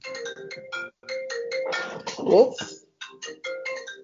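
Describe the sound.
An Apple iPhone's marimba ringtone plays a quick, bright repeating melody of short mallet notes at moderate volume, with a burst of voices talking over it midway.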